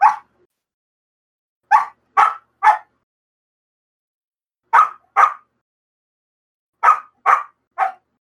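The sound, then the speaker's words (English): A small dog named Matilda barks sharply and loudly in short bursts, about nine yappy barks, mostly in clusters of two or three with pauses between, with no one talking. “And I didn't seem like that was because Matilda was barking.”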